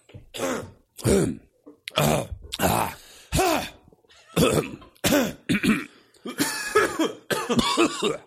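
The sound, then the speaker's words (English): A loud series of about a dozen harsh coughs and throat clearings in quick bursts, some overlapping as if more than one person is coughing, with brief pauses between. “Do you think you heard us coughing?”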